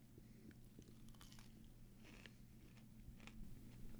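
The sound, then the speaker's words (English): Biting and chewing of a fried chicken tender, with soft crunchy crackles and wet mastication sounds repeating over about four seconds above a steady low background hum. “we have 6 tenders in front of us. Let's get in to them. Yeah, I'm going to try one.”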